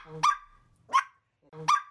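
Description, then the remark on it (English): A four-month-old puppy, Coco, gives three sharp, high-pitched barks, evenly spaced about three-quarters of a second apart, clear with no talking. “Her four-month-old puppy, Coco, naps in her bed next to the desk until she decides it's time for Diane to take a break and play with her.”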